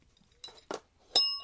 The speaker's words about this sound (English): So it's time to ring the news bell.